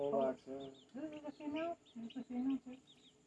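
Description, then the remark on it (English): A chicken clucks in a series of short, throaty bursts with brief pauses between them, fairly loud and fussy-sounding. “I don't know, it looks like it might be a rooster.”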